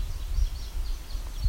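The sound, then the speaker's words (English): Soft, low-pitched pigeon calls, recorded from practically on top of the birds, murmur in a few muffled swells beneath a steady low rumble, with faint, thin chirps from other birds flickering above. “But yet these guys, they're so subtle and low pitch, that doesn't travel far very easily.”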